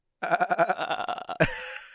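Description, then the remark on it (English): A person makes a quavering goat-like bleat, a wavering voiced sound pulsing rapidly for about a second, then breaks off with a short rough burst. Fairly loud, with no talking. “Like a goat man.”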